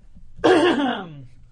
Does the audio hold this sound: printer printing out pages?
no